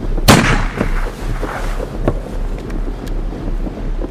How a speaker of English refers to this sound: There's Dr. Wilson shooting at seals again. More skins for science. For a godly man, he shows no mercy with a gun. The seals down here don't know what's hit them. He's got two.